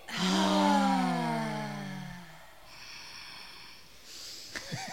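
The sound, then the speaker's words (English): Several people doing a breathing exercise together fill their lungs and let out a loud, open-mouthed exhale, a long voiced sigh that slides downward in pitch over a couple of seconds before fading into quieter background noise. “Fill up your lungs. And then exhale with your mouth open.”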